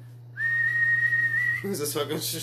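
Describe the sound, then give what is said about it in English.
A person whistles one long, steady, high note for just over a second, clear, imitating whistling to command an arrow, then it stops and someone briefly starts talking. “You'll feel like, what's his name from fucking Guardians of the Galaxy, just like whistling at your arrow”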